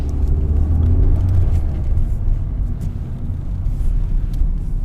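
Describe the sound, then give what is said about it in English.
City street traffic at an intersection, heard while waiting at a traffic light to cross the Ringstrasse: a loud, steady low rumble of cars and heavier vehicles idling and passing, with occasional faint higher hisses over the continuous engine drone. “We're just now waiting at a traffic light to go across the Ringstrasse to toward the direction of Schwarzenbergplatz,”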